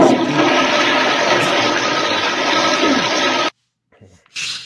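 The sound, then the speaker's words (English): A toilet flushes with a loud, steady rushing roar of water for about three and a half seconds, then cuts off abruptly, leaving a short, faint hiss and trickle. No one speaks. “Where the raft goes down the prehistoric toilet.”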